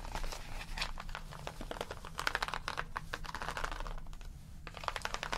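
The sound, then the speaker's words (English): Rapid, scratchy strokes of fine line pencils colouring on paper, steady, with quick back-and-forth bursts and brief pauses, no voices. “Colouring- Pencil Sounds”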